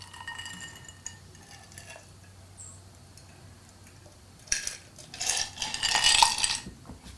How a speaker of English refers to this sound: Lovely little sound effect there of the glass tinkling as I was getting my email set up.